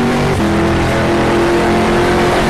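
A loud race car engine drones at high revs, with a brief dip early on as it shifts gear, then carries on steadily as the car accelerates under the Porsche Bridge, heading down towards Indianapolis. No one speaks.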